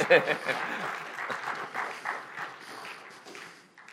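Audience applause, a dense crackle of many hands clapping at a steady level for several seconds before gradually thinning and fading toward the end.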